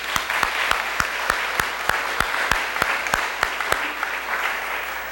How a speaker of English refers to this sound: They clapped for you before you even did anything. How about that?